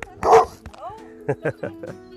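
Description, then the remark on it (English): A dog lets out one loud, rough bark, then a quick run of four shorter, sharper barks and yips, with brief pauses between them. “hey, no growling.”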